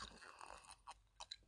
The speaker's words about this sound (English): and then I got my cup of coffee, which I'll take a sip of.